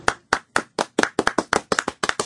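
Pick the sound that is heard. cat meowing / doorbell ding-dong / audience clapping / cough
audience clapping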